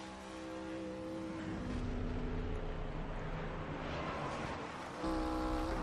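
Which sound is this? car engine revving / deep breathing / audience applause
car engine revving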